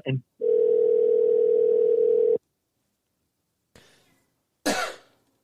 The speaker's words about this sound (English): That's me coughing.